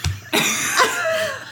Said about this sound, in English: So then like we're like, okay. We cough for a long time. Bless you. So then, let it out.